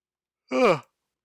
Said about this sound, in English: New Year's resolution number three. Stop yawning on the fucking podcast. Sorry, guys. I think I've yawned in a Joe DiMaggio, like, 56 straight episodes.